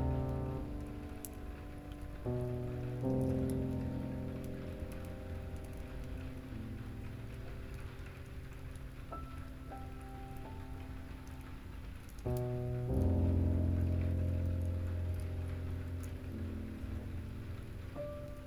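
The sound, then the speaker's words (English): Gentle rain patters as a steady soft hiss with faint drips, blended with sustained, layered musical tones that shift chords every few seconds. No one speaks. “Wash It All Away, Gentle Rain”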